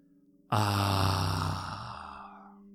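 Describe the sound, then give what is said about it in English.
A single deep, breathy exhalation pushed through the nose or mouth begins abruptly after a short quiet pause, loud, then slowly fades over about two seconds, with no talking. “Feeling the lung fill your body, feeling your belly extend a little bit, really pulling that air down deep, and then exhaling, pushing it through your nose or mouth, feeling the air pass.”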